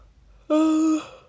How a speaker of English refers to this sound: Oh my god, do people normally yawn in podcasts? I don't think they do. They probably edit it out, but as you know, this is an unedited podcast.